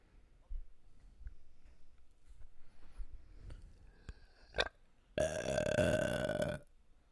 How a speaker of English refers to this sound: Yeah, you're over here burping in the microphone. That was you. No, it wasn't, dude.